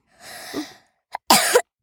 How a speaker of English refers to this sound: You okay? Sorry. That's okay. Just had a bit of a cough. That's okay. It isn't coronavirus.